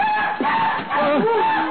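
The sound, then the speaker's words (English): A night bird calls with a loud, wavering cry, its pitch sliding up and down in a couple of drawn-out, harsh phrases lasting under two seconds. “Just another night bird”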